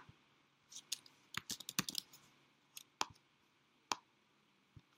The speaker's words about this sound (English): All right. You guys probably can hear my typing.